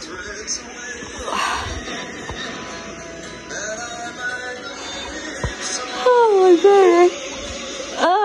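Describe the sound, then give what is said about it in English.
A drawn-out voiced yawn with a wavering, slightly whiny pitch rises near the end, heard over a steady background murmur of indistinct voices. “Why do I have to always yawn?”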